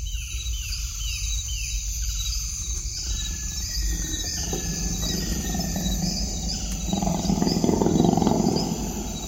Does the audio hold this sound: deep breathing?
no